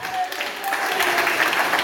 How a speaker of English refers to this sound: Let's clap together.